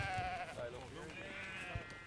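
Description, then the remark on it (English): Several sheep bleat continuously in sheep yards, their wavering, overlapping calls at moderate loudness, with a low thump or two underneath. “On the other side of the sheep yards is the old shearing shed.”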